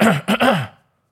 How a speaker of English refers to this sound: Oh, I was like, why are you so aggressively clearing your throat? You only do that once. Because you weren't looking. Right. I wanted attention.